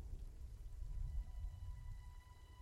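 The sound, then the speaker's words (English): Wind and heavy rain at night rumble together in a steady, muffled wash, low and fairly quiet, with gusts swelling and easing throughout and no voices. “The night is dark, and the wind and the rain don't make for much of a view.”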